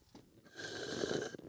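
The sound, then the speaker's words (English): A raspy, gurgling slurp through a straw from an empty cup held up to a microphone, pulling up the last dregs of a milkshake, building over about a second with a steady airy hiss and a thin whistling tone, no talking. “I also just wanted to try and suck up the rest of my milkshake.”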